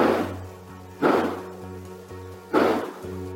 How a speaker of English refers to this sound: Yeah, not only did they tell me that they've got gunshots, but they've got the audio. A home surveillance system from the neighbor captured these loud bangs around 10 p.m. that night.